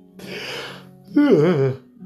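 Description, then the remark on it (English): A long, breathy intake of air followed by a drawn-out voiced sigh that wavers in pitch, like a single person yawning with no talking. “Yawning now.”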